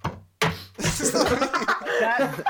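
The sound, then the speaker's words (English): Several sharp knocks of a splitter cable bumping against a tabletop, fairly loud, irregular in rhythm, with voices and chuckling blended underneath. “Hey, whoever keeps on slamming their headset against their table, can you do more?”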